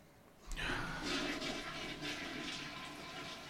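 A toilet flushes loudly, a sudden rushing surge of water that starts abruptly and keeps churning and gurgling steadily for several seconds.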